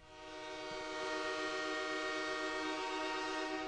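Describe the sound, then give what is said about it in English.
A loud, sustained train horn sound effect blares steadily for several seconds, its rich harmonic tones swelling in at the start and then holding at full volume with no voices present; played on WGR radio as a station-wide wide receiver train bit. “Everyone here at WGR is on the wide receiver train, and we have something for that.”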